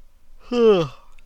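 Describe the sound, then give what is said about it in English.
A single short, voiced yawn lasting under half a second, its pitch sliding downward as it fades, with no talking around it. “Yeah, I know he won't, so you have to listen to me yawn out there.”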